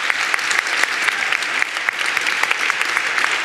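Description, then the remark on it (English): Steady audience applause for a panel at a University of Sydney, Sydney Ideas event commemorating Disability Inclusion Week, a dense wash of many hands clapping at an even, sustained loudness with sharp individual claps popping out throughout. “Round of applause.”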